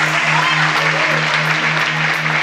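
An applause sound effect: a burst of steady applause from a crowd, dense clapping filling the whole stretch at a loud, even level, with a low hum running beneath it.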